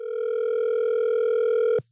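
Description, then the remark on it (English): A telephone ringing: one steady, loud electronic ring tone holding for nearly two seconds before cutting off abruptly, with no voices. “Bring, bring, bring you.”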